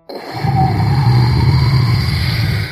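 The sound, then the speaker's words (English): A rocket ship engine roars steadily as it lifts off, rising only a foot before the engine sputters out: a loud, rumbling low drone with a hissing upper layer, holding for a few seconds before easing slightly at the end. “The rocket ship started lifting off in the air, but it only got a foot before the engine sputtered out and it fell back to the ground with a big burst of rocket fire.”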